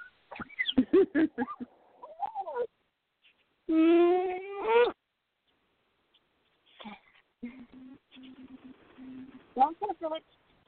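Two pet birds, reacting to a voice saying hi from a phone, chirp and whistle in quick bursts, then let out a loud, sustained harmonic squawk, followed by raspy, buzzy chattering and a few sharp rising calls at the end.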